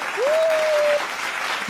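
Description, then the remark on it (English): A clapping sound effect added in editing: a burst of crowd applause, dense and steady, with a thin sustained tone sliding up and holding for about a second near the start, then the clapping continues alone. “So guys, in editing I will add the clapping effect”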